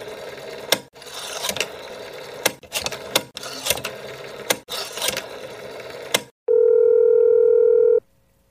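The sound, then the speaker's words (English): A mechanical whirring and clicking as a phone is dialed to call a woman's number runs in several short bursts for about six seconds, then a steady, loud telephone tone hums for a moment with no one talking. “I haven't used one of these in a long time. Oh dear God, please let me remember her number.”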